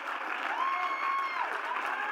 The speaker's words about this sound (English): If you agree, clap your hands. I just need at least two of you.